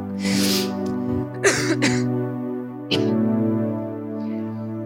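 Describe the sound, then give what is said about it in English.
Several raspy coughs and throat-clearing bursts come close together, loud, with a strained, voiced hum running underneath between them. No words are spoken. “So this morning, would you stand with me while I keep talking through my coughing voice? Sorry.”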